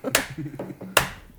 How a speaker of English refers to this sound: I'm going to sarcastic clap now.